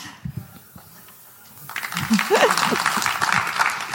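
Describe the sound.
After a quiet opening with a few brief voice sounds, audience applause breaks out and holds steady as a dense, loud wash of clapping, with a voice or cheer briefly rising through it.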